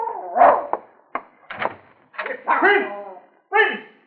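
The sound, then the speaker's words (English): A dog named Prince gives a handful of short, sharp barks mixed with higher, wavering whines, coming in irregular bursts with brief pauses between them. “Hey, that bastard dog, sir. He'd be off digging under Master's cherry tree again.”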